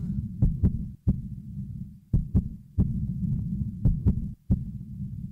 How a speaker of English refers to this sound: What you hear isn't just any beat. It's the actual heartbeat of a child in need.